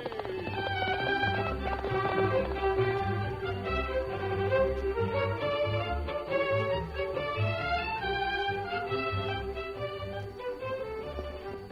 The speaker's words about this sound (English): From out of the past come the thundering hoofbeats of the great horse Silver. The Lone Ranger rides again.